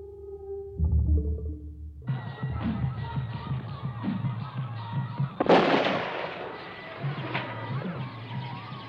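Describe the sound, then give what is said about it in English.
A couple of sharp rifle shots ring out, one loud crack followed by a second a few seconds later, over a dense, rumbling background of noise after a brief tonal opening; a man is sighting in his rifle. “Why are you shooting? Sighting in my gun, Doctor.”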